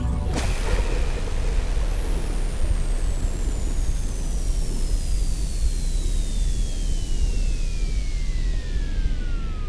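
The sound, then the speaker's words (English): Spacecraft engines roar during landing as a loud, steady wash of rumbling noise that bursts in at once, while a thin high whine slowly glides downward in pitch throughout, with no voices. “Ready for landing.”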